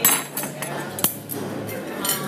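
Metal cutlery clinks and clatters, with one sharp, bright strike standing out among several lighter taps over a steady background hum.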